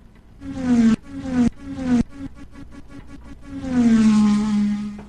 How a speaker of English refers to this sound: let's let them cars go back around the track for the Triple I Sports Cards Incorporated NASCAR Corner